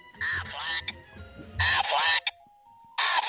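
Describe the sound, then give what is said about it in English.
Three loud, deep quacks from a bigger duck in a commercial, each a nasal, drawn-out honk, come close together with short pauses between them. A faint steady tone hums briefly before the last one. “Well, maybe because he's a bigger duck. That is a bigger duck.”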